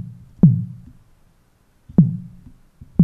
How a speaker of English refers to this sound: Now I want it to decay quicker than that. Okay, we're starting to sound more like a kick drum. I'm going to change my amplitude envelope to decay a little quicker.